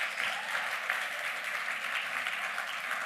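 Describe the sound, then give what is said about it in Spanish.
A church audience applauds itself for being there again, a dense wash of clapping holding at an even level for the whole stretch, with no voices standing out. “Dense un fuerte aplauso por estar aquí otra vez.”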